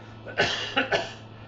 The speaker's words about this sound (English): I'm not COVID, sorry. I cough all the time.